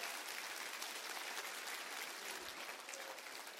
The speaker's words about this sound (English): Clap your hands and say amen for that.